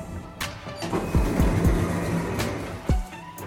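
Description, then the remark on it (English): Elevator doors sliding shut: a steady mechanical motor whir with several low thuds and clunks spread through it, ending in a firmer knock near the end. No one speaks. “Doors closing.”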